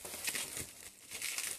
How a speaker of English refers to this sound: And I'm undoing the bubble wrap here.